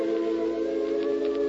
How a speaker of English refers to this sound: Look, George, it's an ambulance.